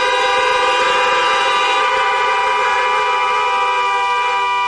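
Several car horns blare together in a loud, continuous chorus as the audience in their cars honks amen after a prayer during a church service, the overlapping tones held steadily for the full few seconds with no voices heard.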